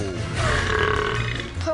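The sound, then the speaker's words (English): A single long, croaking burp, presented as a water horse's burp, drawn out for over a second, loud, with a rough, gurgling voiced tone; it sounds like a person forcing or imitating a belch. “Oh, the water horse burps.”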